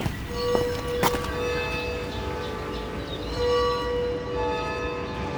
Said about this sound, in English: You can hear the distant church bells of Florence's many towering cathedrals.